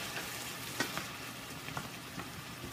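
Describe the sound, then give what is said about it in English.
Vegetables sizzle steadily in a pan as they cook to soften, a dense crackling hiss broken by a few sharper pops and spatters, with no talking over it. “So right now we've got 9 minutes left on the rice here, and we're just sort of cooking these veggies here, making them a little bit softer.”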